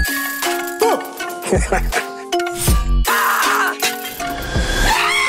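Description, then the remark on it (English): In the sound design of a film trailer, a bike bell rings over and over, mixed with someone going "ha", snipping shears cutting and other layered noises in a busy, collage-like texture that stays loud throughout. “There's one particular section where there's a bike bell and then someone kind of goes, ha, and there's some shears cutting and it seems kind of abstract.”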